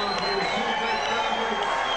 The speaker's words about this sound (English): An appreciative audience in the sold-out poker room in the Sands applauding these.